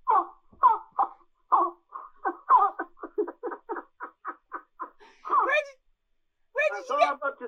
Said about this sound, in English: Have you genuinely got some grass you're playing? Because I talked over that. Have you still got any left on the reed?